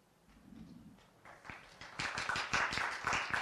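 A few scattered claps start, then quickly build into a brisk, steady round of applause from an audience at a Board of Governors candidates' debate as the candidates are invited up to the stage, growing louder toward the end with no voices over it.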